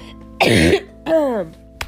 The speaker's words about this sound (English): Oh, that's a man's cough.